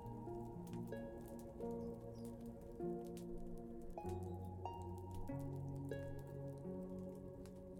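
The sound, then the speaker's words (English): Soft, steady rain patters and drips on a wooden treehouse as a storm approaches, mixed with gentle sustained musical tones, a calm continuous backdrop with no talking. “You feel a sense of calm and comfort as you listen to the sound of the rain falling softly on the wooden treehouse.”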